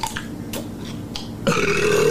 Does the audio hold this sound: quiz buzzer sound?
no